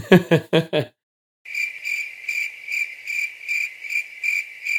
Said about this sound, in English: Insert cricket noises here.